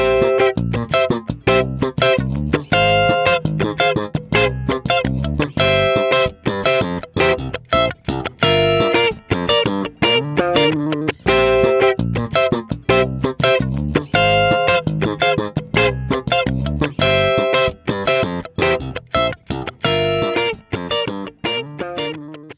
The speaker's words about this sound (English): So that is the first layer of our loop. And that'll just, if I leave it, it'll just keep on looping forever, just like that. Let's add some funky slap bass.